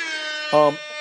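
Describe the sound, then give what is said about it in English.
A short, loud air horn blast cuts in briefly over a steady buzzing drone, then drops away as the drone carries on alone. “Give me an air horn for that.”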